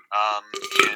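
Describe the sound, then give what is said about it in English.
A person lets out a short burp after drinking RC Cola, starting as a brief tonal croak and ending in a rougher, breathy rumble, heard alone. “I'm going to take away from the mic and do a little burp.”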